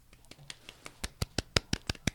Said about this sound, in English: Golf clap.